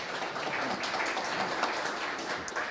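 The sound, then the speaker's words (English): A crowd applauds steadily for a co-founder who has just stood up, a dense wash of many hands clapping at an even, moderate loudness for a few seconds with no one speaking. “You can clap.”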